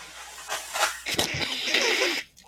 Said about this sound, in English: I dropped it on the ground. Now it's got dog hair on it. No, it doesn't. Just blow your nose in it. Okay, give me a sec.